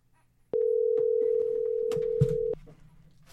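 A steady, loud telephone dial tone holds for about two seconds while a phone call is placed to a guest, then cuts off abruptly, with faint room noise and a few soft clicks underneath.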